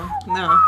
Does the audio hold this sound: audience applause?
no